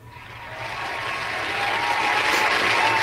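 Sustained applause from a crowd, many hands clapping in a dense, steady wash that builds gradually louder over a few seconds, with no voices standing out.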